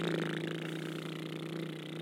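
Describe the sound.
A voice imitates a Bobcat loader's engine with a steady, rumbling, buzzy drone that holds an even pitch and loudness for about two seconds, with no other talking.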